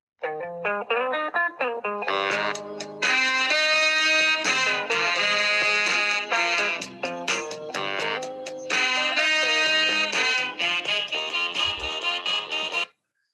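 A 1971 soul song plays through a phone speaker held up to a headset, sounding thin and slightly distorted, with sustained melodic vocals and instruments running steadily for about thirteen seconds without any talking.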